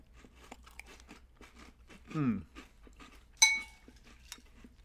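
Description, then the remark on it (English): Crisp crunching of cereal being chewed in a steady series of bites, with a brief hummed murmur of enjoyment and a sharp spoon clink against a bowl. “All right, I'm digging in.”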